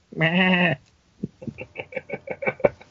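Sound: goat bleating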